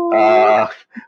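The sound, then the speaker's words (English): One of three dogs, sleeping right behind the speaker in British Columbia, Canada, lets out one drawn-out, tonal groaning whine lasting about half a second, followed by a short, softer grunt. No one speaks. “One of them is sleeping right behind me at the moment.”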